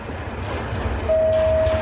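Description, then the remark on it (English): An elevated train in the Bronx, New York, rumbles past with a steady low-end roar, then a long sustained tonal whine or squeal rises over it near the end. “And I knew that that part of the Bronx had many elevated trains, a kind of rat's nest of trains converging in this area.”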